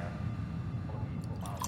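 Wet, squelchy drips of condensation over a steady low rumbling hum, with a few brighter droplet sounds toward the end; no voices.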